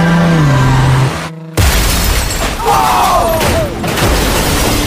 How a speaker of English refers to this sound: Whoa. Let's go. I love cars hitting things. And if you're wondering, the other car is still going in circles.